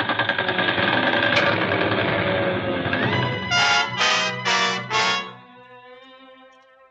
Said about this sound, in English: Keep that gun fired till I get back. Okay, Admiral.